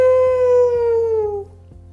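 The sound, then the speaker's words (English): A voice imitates a wolf howl: one long, loud, steady tone that slowly slides downward and fades after about a second and a half, with a faint rhythmic tapping underneath. “You see, wolves, they howl like that to talk to each other.”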